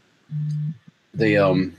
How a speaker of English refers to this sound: Is someone's phone buzzing or something? Not me.